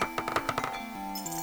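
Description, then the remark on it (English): Keys jingle on a keyring in a burst of quick, bright metallic clinks during the first half second, then fade, leaving steady humming background tones. “The Wiz, what do you think you're doing with my keyring? But they're keys, Pally!”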